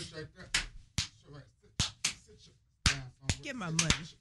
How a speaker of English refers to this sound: It's a lot of slaps. Can I get some assistance with the slaps, y'all?